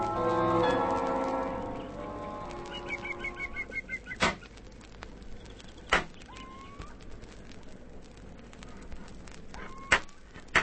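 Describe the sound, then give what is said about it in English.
Several sharp, loud metallic bangs, like hammer blows on metal, strike at irregular intervals after a fading tonal hum, with a quiet background between the blows. “Sounds like somebody hammering on metal.”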